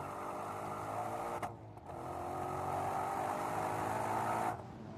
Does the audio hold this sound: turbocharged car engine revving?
yes